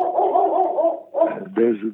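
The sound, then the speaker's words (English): A female shepherd dog barks at gardeners, starting with a drawn-out, wavering whine-like bark and then a couple of short, sharp barks in quick succession, loud and clear. “The dog is agreeing with me, you see.”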